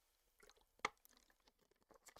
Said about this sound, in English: I'm going to take a sip because I have been talking the last 21 minutes, and I know I took a sip before, but with that being said, we're going to go continue.